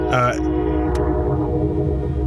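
A train rumbles past, its horn holding steady, droning tones over a continuous low roar for the whole stretch.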